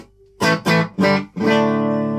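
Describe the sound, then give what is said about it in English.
A clean electric guitar, a custom shop Telecaster in its normal tones, strums four bright chords in quick succession, the first three cut short and the last left ringing out, fairly loud with no voices. “So we've got our normal telly tones.”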